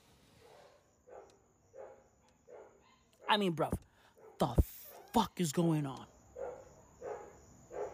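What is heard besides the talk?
dogs barking at night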